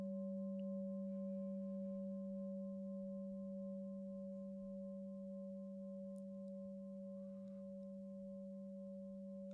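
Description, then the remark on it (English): A meditation bell's long, steady ringing, a low pure tone with a fainter higher overtone, sustaining evenly and only very gradually fading. No voices. “The slow degrading of the sound of the bell helps to keep us aware of the present moment moving through time, and helps to bring us into it.”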